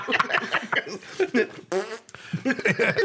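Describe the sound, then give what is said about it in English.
Amid chatter, a voice blows a short, buzzy raspberry imitating a pig's fart, sputtering for under half a second before the talking resumes. “Yeah, okay, as it's getting put out, there's like the last fart that pig had squeezed out.”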